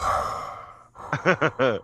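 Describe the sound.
A voice imitates the heavy breathing of a man sitting in a chair: a long, loud breathy exhale, then a short pause and about four quick voiced huffs in a choppy rhythm.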